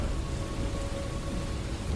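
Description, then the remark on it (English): Heavy, steady rain from a storm pours down without a break, with a deep rumble like thunder rolling underneath. It stays loud and even throughout, with no voices. “The storms here are quite lethal.”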